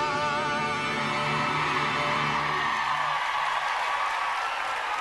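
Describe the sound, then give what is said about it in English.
A single voice mimics crowd applause and whooping, a breathy, hissing roar with rising whoops over about five seconds, steady and fairly loud, thinning toward the end. “I'm doing my own applause.”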